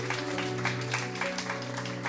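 An audience claps steadily, a dense, crackling patter of many hands at moderate loudness, with a steady low hum underneath and no one speaking.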